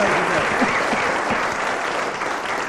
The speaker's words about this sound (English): And I've discovered that Graham Garden won about 3 minutes ago. Graham Garden, let's have a round of applause for Graham Garden.